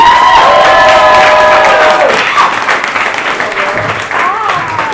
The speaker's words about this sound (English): Let's get this next comedian up here. He doesn't know he's coming up. Big round of applause, everyone. You may know him from Geek Show.